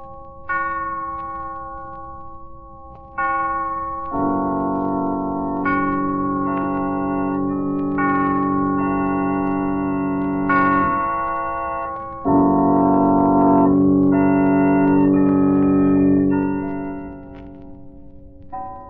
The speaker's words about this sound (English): He'll rise from bed in a hypnotic state, dress, and start for a walk just as the clock strikes midnight. Listen, it's midnight now.